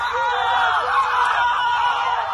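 Basketball player Iggy gives his trademark scream during a basketball game, loud and continuous, his voice harsh and clipped with heavy distortion from over-modulation, filling the whole short stretch without pause.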